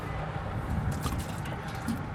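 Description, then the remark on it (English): Steady, continuous rushing of running water at an outdoor water mill, a broad wash of noise with faint splashing detail, even in level throughout, with no voices. “But now I'm outside standing at the water mill, and this is what I'm really curious about.”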